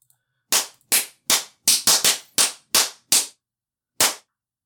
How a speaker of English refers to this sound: Alright, I'm gonna do some claps and we're gonna get back into it.